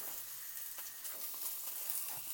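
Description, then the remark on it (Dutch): Steady, crackling sizzle of pigeon legs frying in a pan, a dense hiss with scattered pops and soft shifts as the pieces are turned over by hand, no voices. “Ik draai hem nog even een keertje om. En ik draai hem gewoon met de hand, want nou ja, dat kan.”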